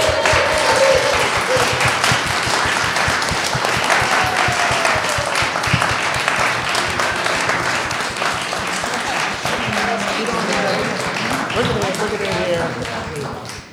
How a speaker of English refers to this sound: So what I'd like to do is ask all of our speakers to come up. And if you'd all come over here for a second. Can we give them a giant round of applause?